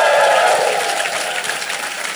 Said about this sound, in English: Taking that into account, that was good whooping. It was very good whooping. Yes, give yourself a big round of applause. Give yourself a big whoop for your whoop.